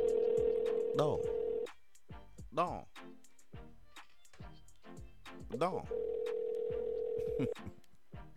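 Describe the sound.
A telephone line rings out with two long, steady ringback tones, one at the start and one near the end, as a call is placed to reach an interview guest, while people talk briefly between them.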